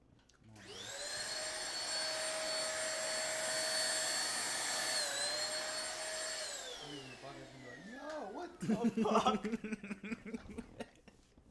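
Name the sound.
vacuum cleaner running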